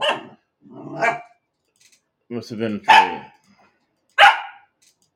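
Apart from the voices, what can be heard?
dog barking excitedly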